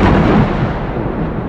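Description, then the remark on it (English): A loud rumble of thunder from a storm outside rolls through, broad and booming, with cracking lightning, holding steady before slowly easing off. No voices are heard. “The storm was pounding outside. Thunder and lightning, like cracking lightning too.”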